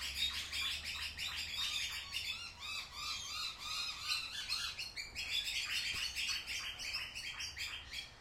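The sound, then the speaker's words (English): A myna bird's harsh alarm calls in Melbourne, warning of something sneaking around; dense repeated squawks and chatter fill the whole stretch, loud, with no one speaking. “So that's called a minor bird. We call it a minor bird.”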